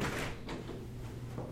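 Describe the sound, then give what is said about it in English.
A dice roll: a few dull knocks and clatters spaced across a second and a half, the first the loudest, over a low steady hum with no one speaking. “I'm guessing that was one of the dice rolls.”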